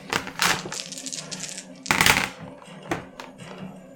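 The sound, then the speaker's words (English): Dice clatter and tumble across a hard table in a few quick, bright bursts, with sharp clicks and rattles, followed by a couple of smaller settling clacks, as double damage dice are rolled for a critical hit. “Double damage dice. Dice you roll twice, yeah.”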